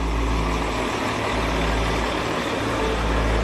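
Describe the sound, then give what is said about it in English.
A heavy truck laden with produce crosses a low-lying, privately owned, reinforced bridge at harvest time, its engine a steady low drone with broad road noise, holding at an even, loud level throughout with no voices. “coordinate the safe crossing of trucks in and out of the area over the low-lying bridge”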